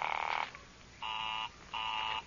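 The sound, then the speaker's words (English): A telephone busy signal on a call to an office number, Murray Hill 32491: three steady, buzzy tone bursts of about half a second each, separated by equal gaps of silence, in an even on-off rhythm at moderate loudness with no voices. “Oh, it's busy again. Operator, the line is busy.”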